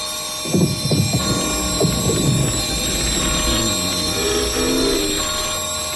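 A clock strikes twelve, chiming with a cluster of ringing, resonant tones early on and a softer chime later, over a steady mechanical hum and faint high-pitched whine. No one speaks.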